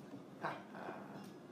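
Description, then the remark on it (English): A dog gives one short, muffled bark, then a faint, drawn-out whimper, both quiet against a soft background hiss. “The dog.”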